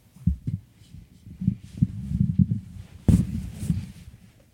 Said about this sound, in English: Because clearly you, as the EP, haven't heard the chair rubbing against the wall or the table to fix it on your own, so I took the liberty of doing so.